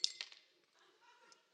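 Ice cubes clink into a glass for Classic Coke from a can: a few quick bright taps at the start, then a faint settling rattle that fades out.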